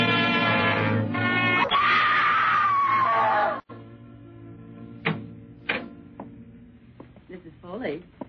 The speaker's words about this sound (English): You mustn't scream like that. I wasn't screaming.